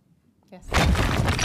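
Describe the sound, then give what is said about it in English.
A loud crash bursts in after a brief near-silence, then keeps roaring with a dense rumble of crumbling, smashing debris, like a brick wall being broken through. “So we are going to finish up tonight smashing through the brick wall.”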